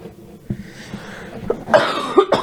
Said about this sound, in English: Sorry, guys. I have a cough today.